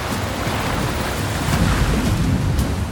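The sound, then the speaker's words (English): A steady, loud roar of rushing river water fills the scene, a continuous churning wash that swells slightly midway, with no voices present. “The force of the river and the lost soul was too much for him. Nezahualcoyot felt the water fill his throat.”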